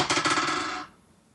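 Dice clatter and rattle across a hard surface in a quick burst of sharp, bright clicks lasting under a second, then settle into silence; the roll comes up 13. No one speaks.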